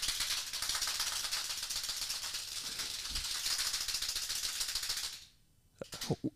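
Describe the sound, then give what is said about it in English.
Hand clappers shaken in a studio in a fast, continuous plastic clatter for about five seconds, bright and loud, then a sudden stop followed by a few sharp, separate clacks. “Now that we have the clappers, we're going to start working on a whole routine with them.”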